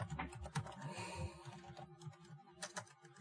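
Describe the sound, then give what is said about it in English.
Rapid clacking of computer keys being typed in quick, uneven bursts, moderately loud, with no talking over it. “Hey, what's going on with your keyboard?”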